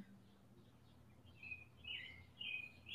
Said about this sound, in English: It's possible you hear Candace's birds chirping and you're interpreting that as some sort of echo. I have birds outside.